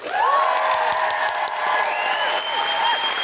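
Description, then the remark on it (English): A crowd applauds co-host Jen Brister, dense clapping with cheers and whoops rising over it, loud and sustained throughout without a break. “can we have a really, really big round of applause for our fantastic co-host, Jen Brister?”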